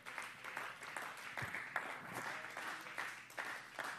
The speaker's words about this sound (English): Would somebody clap your hands for a moment?